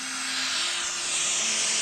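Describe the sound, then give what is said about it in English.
Steady, even white noise played for sleep hisses without a break, a broad airy wash with a faint low tone running faintly underneath. No voices are heard. “That's white noise and Bram's lullaby.”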